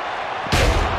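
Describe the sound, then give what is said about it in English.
Yokozuna smacks a steel chair hard into wrestler John Morrison: one sudden loud crash about halfway through that rings out noisily over a steady background hum of crowd noise. “Yokozuna with that steel chair.”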